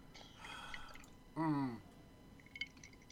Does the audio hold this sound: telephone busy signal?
no